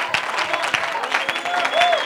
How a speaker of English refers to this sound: But not only should I have a praise in my mouth, but Psalm 47 and 1 says, oh, clap your hands, all you people. Not only should there be a song in my mouth, but there ought to be a praise in my hands.